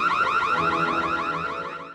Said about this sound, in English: So that's a woman inside her home where the stereo's going on, the alarm's going off. She's talking to someone saying, my smart home, everything's going haywire at once.